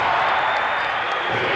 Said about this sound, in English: Chanting defense.